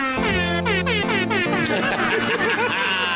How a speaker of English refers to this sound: Yes! Christmas air horn. Oh, lovely. Let's be honest, that is an audio monstrosity. Oh, it's great. It's the first sign that Christmas is really here. Christmas is coming. When they drop the festive air horn, that's when you know.